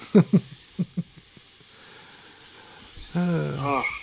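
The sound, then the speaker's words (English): A cat meows, demanding to be let in: a few short, clipped calls at first, then a pause and one longer, drawn-out meow with a wavering pitch. “I got somebody in here yelling at me.”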